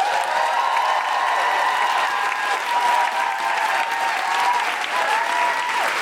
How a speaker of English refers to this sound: Can I have an absolutely huge round of applause for the wonderful Dr. Farah Karim-Cooper?